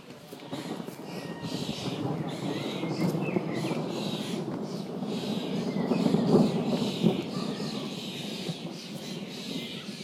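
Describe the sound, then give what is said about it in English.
A dense, noisy outdoor chorus of chirping birds fills the scene continuously, loud and busy, with overlapping calls and a constant rustling background texture. “The birds are going mad now. It's so noisy. It's like the rainforest there.”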